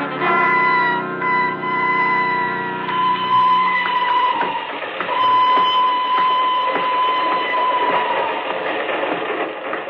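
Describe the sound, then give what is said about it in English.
A train to Bern rolls steadily along the rails, with a continuous rumbling roar, rhythmic clacking and a thin sustained metallic whine running through it. It is loud, with no voices. “I'm leaving on the train to Bern.”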